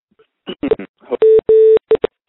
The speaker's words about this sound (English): I'm going to hang up the phone. I'm going to take another call.